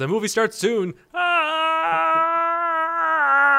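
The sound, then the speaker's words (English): A voice imitates a porg's scream: a couple of quick warbling yelps, then a loud, steady, high-pitched squeal held for over two seconds, with no other talking. “I was just going to scream because apparently that's what the porgs do in the trailer, and I was trying to be cute.”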